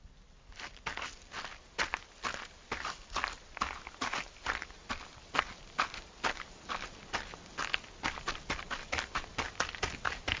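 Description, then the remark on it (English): Steady footsteps walk toward a door at an even pace, each step a crisp tap repeating about twice a second over a quiet background, with no one speaking. “I smiled a little at that, and tore the corner off to stuff into my pocket while I left the 3 5s on the table before making my way to the door.”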